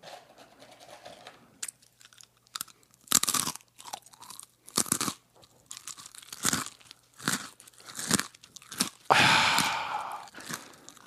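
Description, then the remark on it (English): A crunchy pretzel being chewed, with a string of sharp, crackly crunches in an irregular rhythm over about eleven seconds, loudest and longest near the end, with no talking. “I'm going to say pretzel. Ding, ding, ding, ding, ding, ding, ding, ding.”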